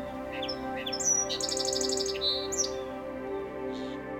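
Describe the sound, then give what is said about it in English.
A songbird sings a few spaced, high whistled notes, then breaks into a quick run of rapid trilled notes, fairly clear over a steady low background hum. “They usually begin their song slowly, with spacing between notes, and then continue with faster notes and trills.”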